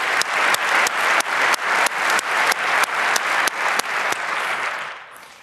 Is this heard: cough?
no